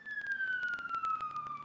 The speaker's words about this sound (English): Fucking sirens.